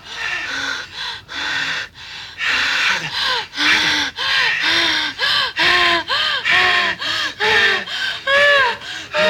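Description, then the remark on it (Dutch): A person pants heavily and rhythmically, a fast run of loud, breathy, partly voiced gasps that barely pause for the full stretch, performed as an exaggerated imitation of panting. “Ja, maar wat moet ik dan doen? Hijgen, joh.”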